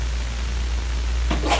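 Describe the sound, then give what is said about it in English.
A single quick sneeze erupts near the end, a sharp breathy burst following a brief intake, over a steady low hum with no one talking. “Bless you.”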